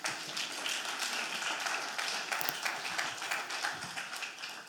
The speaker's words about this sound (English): Oh, you can clap for him.